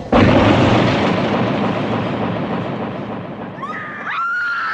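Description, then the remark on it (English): A single loud blast of a real shotgun, fired on a film set by special effects artist Tom Savini, erupts at the start, its booming roar slowly fading over several seconds, followed by faint high-pitched squealing tones near the end. “suddenly Frank jumps on the hood and fires a shotgun directly into Savini's face”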